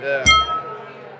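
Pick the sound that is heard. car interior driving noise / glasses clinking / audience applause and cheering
glasses clinking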